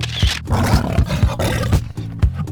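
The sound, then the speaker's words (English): A person growls out a loud, drawn-out roar imitating a tiger, rough and throaty, with pulsing bursts across a couple of seconds. “Now you're a tiger. Show me. You're a tiger clawing the camera. Show it to me. Roar.”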